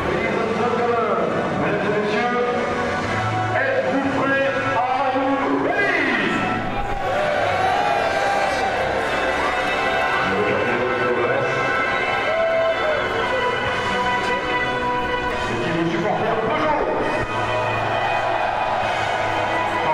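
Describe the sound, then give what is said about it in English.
Several racing car engines scream at full throttle together on the same stretch of circuit, their overlapping high-pitched whines rising and falling as cars pass, loud and continuous over a murmuring crowd. “it's one of those rare moments where you'll hear all the engines absolutely flat out on the same stretch of circuit”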